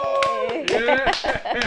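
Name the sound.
studio audience applause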